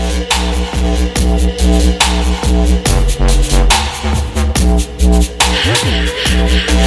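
Loud electronic dance music played from an Echo smart speaker, with a pounding, booming bass and sharp rhythmic 808 drum hits, a dubstep-style track with a wobbling pitch-bent synth near the end, played without any talking.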